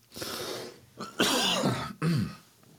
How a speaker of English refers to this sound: All right, hopefully I can get this cough gone, right?